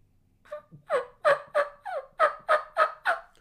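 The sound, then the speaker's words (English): A turkey gobble blown on a game call: a fast, rattling run of about nine throaty, warbling bursts lasting roughly three seconds, loud and alone with no talking. “That turkey's in y'all's living room.”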